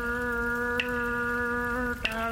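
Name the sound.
falling rain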